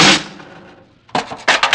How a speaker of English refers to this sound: He slammed the furnace door and threw down the shovel.